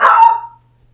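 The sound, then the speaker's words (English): A single loud dog bark with a sharp onset that trails off over about half a second, followed by near silence and a faint low hum. “Which, sorry, my dog.”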